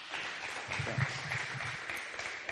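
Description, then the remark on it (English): An audience claps steadily, a dense, even patter of many hands that holds at a moderate level for a couple of seconds, with a faint murmur of voices underneath. “Thanks for clapping for me.”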